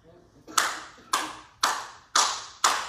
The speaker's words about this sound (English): Clap of praise. Come on. Somebody give me a hand for my preaching.